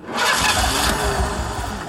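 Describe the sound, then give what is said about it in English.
A car engine, filled with bad gas, cranks steadily for about two seconds, a loud grinding whir with rapid rhythmic chugging that never catches and fires up, leaving the car stuck in the middle of the street. “Will not start.”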